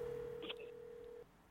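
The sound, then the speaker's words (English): A single steady ringback tone purrs over the phone line for just over a second, then cuts off, with a faint brief chirp partway through and no one speaking. “Come on, Carlos, pick up the phone.”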